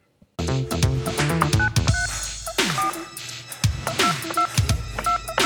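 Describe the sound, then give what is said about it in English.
A series of short telephone dialing tones beeps in quick succession as someone dials a phone to call somebody, mixed with a busy, cluttered background of other sounds, fairly loud throughout. “And I'm going to even do it right now for you. I'm going to call somebody.”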